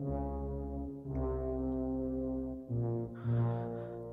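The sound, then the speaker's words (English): Eerie horror film theme music from The Shining: deep, sustained brassy tones swelling in three long phrases, heavy and ominous, with no voices. “That is The Shining. I still get shivers when I hear that.”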